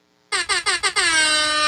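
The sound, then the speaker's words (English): A loud air horn sound effect blares four quick staccato blasts followed by one long sustained honk, piercing, with no voices present. “Second place is Airhorn at 51.”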